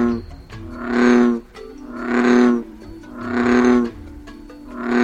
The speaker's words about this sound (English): In India, people once believed frogs to be the physical incarnation of thunder. That's not surprising when you hear the bellow of a male bullfrog. What these amphibians lack in size, they make up in volume.